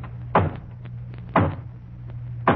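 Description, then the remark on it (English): Three slow, evenly spaced hollow knocks on a wooden front door, demonstrated as a sound effect, each a dull thud with a short resonant tail, set over a low steady hum. “And then there's the hollow knock on the front door.”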